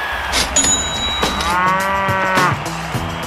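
A single loud, drawn-out cow moo with a rich harmonic drone that rises and falls over about three seconds, with no talking.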